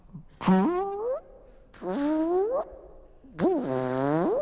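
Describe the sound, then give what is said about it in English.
A voice imitates a robot in the manner of Michael Winslow from the Police Academy movies, in three separate buzzy, mechanical bursts, each a rising electronic-sounding whine sliding upward in pitch, fairly loud with short pauses between them. “And now, the black guy from the Police Academy movies, a robot.”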